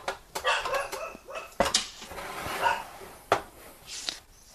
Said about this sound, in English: I apologize if you can hear the dog. I don't know what's gone into him today. Well, we could ask him, I suppose. He doesn't seem to be in a listening mood, so he probably won't tell you.